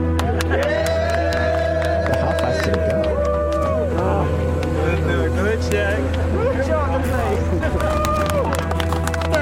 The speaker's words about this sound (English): The car drove faster and faster and continued down the track.